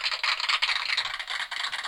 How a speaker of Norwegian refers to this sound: Men jeg har en lydboks her, en veldig basic lydboks som kan lage lyd. Så kan jeg, hvis jeg lager litt applaus,